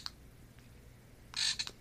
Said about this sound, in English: Yeah, so if you heard that, I got a frog, a keychain frog, and yeah, I accidentally sat on it once and it like started ribbiting over and over. I'm like, what and why are you doing that?